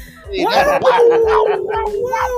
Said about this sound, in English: Ooh, these cats are crying here outside. Wow. You got cats, bruh? Hey, bruh, strays, dog. Oh, stray cats.